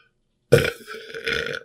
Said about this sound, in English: That's a chonky burp. But now I can breathe better.